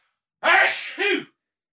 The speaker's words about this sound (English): Well, I got a sneeze coming.